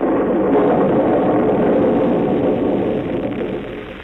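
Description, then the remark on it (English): A rolling rumble of thunder on a nasty, rainy day with howling wind, loud and low, holding steady as one continuous roar before easing slightly near the end, with no voices. “Then it began to thunder.”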